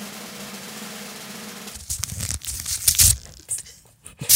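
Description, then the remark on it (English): Paper tears in a string of ragged, crackly rips as an award envelope is pulled open to reveal a winner, following a second or so of low steady hum; the bursts grow louder toward the end. “How about you move the envelopes?”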